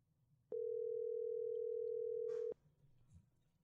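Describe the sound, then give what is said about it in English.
A loud, steady telephone dial tone, heard after a call became disconnected, drones without a break for about two seconds, then cuts off abruptly, leaving faint background rumble before and after. “Somehow the phone became disconnected, but we could just pick up right from where we were at.”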